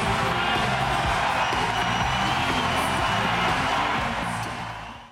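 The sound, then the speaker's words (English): A huge arena crowd at the London 2012 Olympics roars and cheers at full volume, a dense, sustained wall of voices and whoops that barely wavers before fading slightly at the very end. “I remember just listening to the crowd. They were cheering so loudly, you couldn't block it out even if you tried.”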